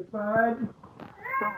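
A cat meows twice, each call drawn out and fairly loud, with a brief scuffing noise in the short gap between them.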